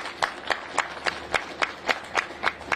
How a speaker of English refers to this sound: Give a round of applause for Treasurer Coggs.